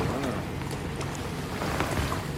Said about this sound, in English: Day three, kayaking on the fjords. Here we go. We're just kayaking through the fjords, and it is beautiful. Just mountainous terrain that surrounds us, this beautiful still water, and waterfalls everywhere.